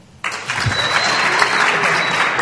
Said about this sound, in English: You weren't supposed to clap at that point.